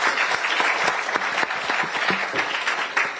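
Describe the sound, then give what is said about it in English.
An audience claps steadily in a round of applause for KMB, a dense, bright patter of many hands with no pause, holding a fairly even loudness throughout. “Please, a round of applause for KMB.”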